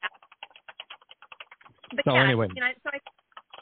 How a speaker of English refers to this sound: I hear a lot of typing in the background. Whoever's typing, I don't know who that's doing that, but I'm hearing that pretty loud and clear. Your mic's picking that up.